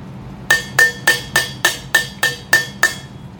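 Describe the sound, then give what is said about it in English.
A page-turn cue sound signalling that it is time to turn the page of a story: a quick, even run of nine bright, ringing metallic taps, fairly loud, each fading fast before the next, with no voices. “That's the sound you'll hear whenever it's time to turn the page.”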